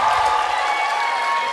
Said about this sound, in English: I know, because they were applauding over it, so I just really quickly got it out.